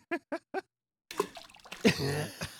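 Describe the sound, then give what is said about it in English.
A sound-effect button plays three short, tonal blips, then a loud, noisy rush of water splashing that lasts over a second, with a brief voice-like tone mixed into the splash. “Oh, this is a splash. I don't know what's splashing in that.”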